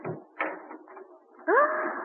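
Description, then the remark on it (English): The door of Benjamin's little printing shop on Market Street opens as he arrives with paper in a wheelbarrow: a few soft clunks and rattles, then a drawn-out, rising creak of the hinges that holds steady to the end. No one speaks. “Open the door for me, Debbie.”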